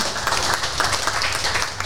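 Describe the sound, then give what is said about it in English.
An audience at a panel event applauds an audience question, a dense patter of many hands clapping at once at a fairly even level with no voices standing out over it. “Round of applause for the question.”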